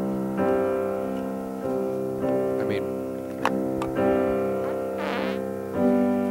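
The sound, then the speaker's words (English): A fart blown right into the microphone, a long low buzzy rasp broken into several sustained stretches with brief pops between them, fairly loud and steady throughout. “I'm going to fart into the microphone.”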